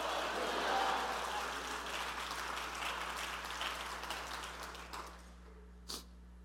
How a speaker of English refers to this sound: I wish somebody would clap your hands and shout hallelujah. Hallelujah.